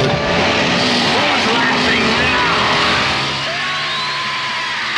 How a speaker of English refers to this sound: Who's laughing now with a chainsaw sound? That would be the Evil Dead.